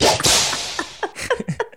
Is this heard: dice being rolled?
no